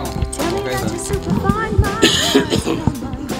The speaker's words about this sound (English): We're back, and I'm still coughing. There's no question about it. Yes, and some people have this. What do you think it was? Bronchitis. Yeah, bronchitis. Probably like residual how, bronchitis.